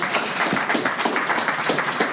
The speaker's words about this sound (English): Please give Stephnie a round of applause.